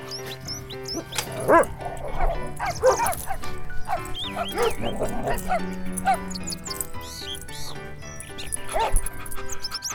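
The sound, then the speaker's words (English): Several dogs playing at a dog park yip and bark in short, scattered bursts over a busy outdoor background, with playful high-pitched yelps popping up amid a steady murmur. “Zooming around like a crazy dog at the park is the best.”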